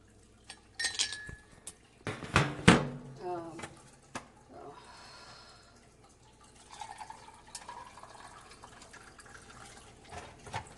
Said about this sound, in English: Oh dear, our ice maker's broken. It loves to try and like put water in addition with the ice, and it freezes. So it's just a little annoying.